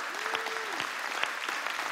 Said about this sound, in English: Come on, moms. Let's give our moms a round of applause, will you please?